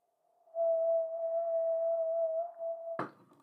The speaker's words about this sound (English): we're attempting to do the wine glass rim thing. The wine glass rim thing.